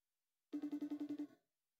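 phone call ringing

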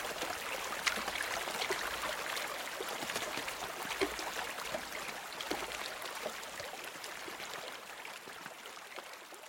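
flowing river water

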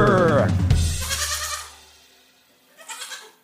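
goat bleating

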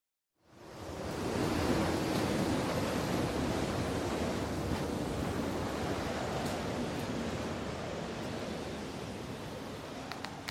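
howling wind

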